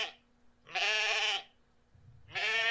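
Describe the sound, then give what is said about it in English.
A bighorn sheep bleats twice, loud: one long, wavering cry, a brief pause, then a second bleat starting as the sound ends. No voices, just the animal alone. “I love to watch the bighorn sheep scale steep cliffs.”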